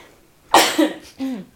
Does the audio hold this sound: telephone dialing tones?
no